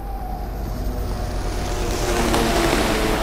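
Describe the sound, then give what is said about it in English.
A speeding jet ski's engine drones steadily over rushing water and wind noise, its buzzing pitch holding firm as the sound swells slightly louder over a few seconds. No voices. “The airship suddenly braked to allow a Union Patrol airship to zoom by in pursuit of what looked like a speeding jet ski.”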